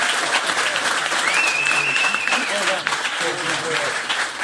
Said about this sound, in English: We've obviously learnt an awful lot from Dan Hodges from the Mail on Sunday. So a special round of applause for Dan.